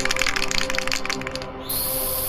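A spray can hisses in short, rapid bursts while spray painting grass green, pauses briefly, then releases one steady, bright hiss, with a low hum running underneath and no one talking.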